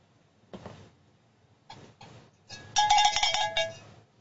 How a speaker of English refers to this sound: Cowbell for Steve in New York.